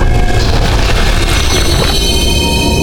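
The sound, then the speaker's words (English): A heavy crash as Draco smashes through a wall blends into his loud, sustained roar, the dense rumbling noise staying forceful throughout with a sweeping tone partway through and no talking. “Draco smashes through the wall and lets his presence be known with a loud roar.”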